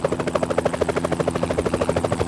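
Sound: helicopter flying overhead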